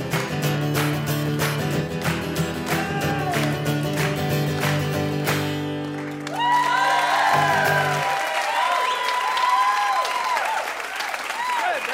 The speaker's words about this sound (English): Good clapping. Major clappage.